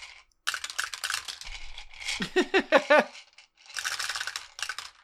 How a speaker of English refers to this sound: Everyone in the club, roll a perception check. Everyone in the club. You just hear hundreds of dice.